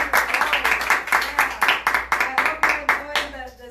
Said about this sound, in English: How many are enjoying from the studio? Yeah. Amen. Yeah. Amen. Amen. Why don't we give a clap?